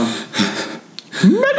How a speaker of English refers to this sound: I gotta cough real hard. I'm holding it in.